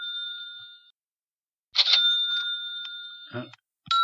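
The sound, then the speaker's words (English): A small bell rings clearly in three bright, sustained bursts separated by short pauses, the middle ring longer and starting with a clattery jangle. “There's a bell. Close enough.”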